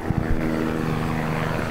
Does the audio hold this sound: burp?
no